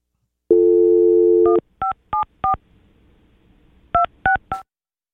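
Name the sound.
phone number being dialed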